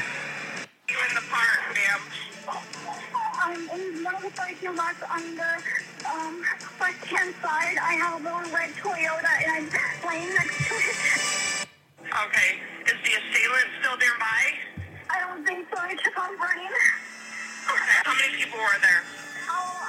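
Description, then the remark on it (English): Tense, dramatic music plays steadily beneath a muffled, phone-quality conversation between two voices, with the music and talk running continuously apart from a couple of brief cutouts. “Okay, so I apologize for the dramatic music, but that was the only clip I could find, and it was actually from a Snapped episode, so it's got all that dramatic music in it, and it was, of course, like, chopped up, so I did my best”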